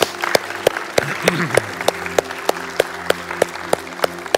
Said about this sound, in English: Can we give God a round of applause today?